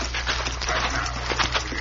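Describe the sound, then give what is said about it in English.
Horses' hooves clip-clop at a steady walking pace, moderately loud, as the horses are led away out of sight, over a low background hum. “Come on, let's get the horses out of sight.”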